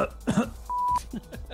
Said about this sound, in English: I keep coughing. I've still got a cough, and I keep trying to go for the cough button, and I always hit this one.